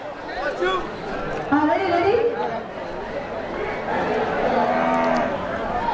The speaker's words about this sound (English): There was her first moo of the day.